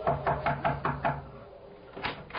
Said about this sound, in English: I crossed the driveway, rapped on the door.